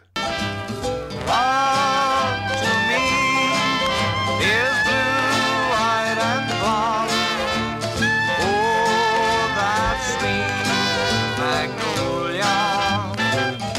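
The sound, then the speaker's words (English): A sung pop tune with steady instrumental backing, processed to sound like an old gramophone record. The singing and accompaniment play continuously at a fairly constant loudness throughout. “It sounded so weird and different because it sounds like that old recording, like an old like gramophone.”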